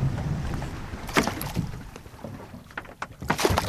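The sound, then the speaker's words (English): A 20-foot-long research boat moves across the water off Maui, with a steady low rumble, rushing wind and intermittent splashes against the hull. Nobody speaks. “It's twice the size of the 20-foot-long research boat.”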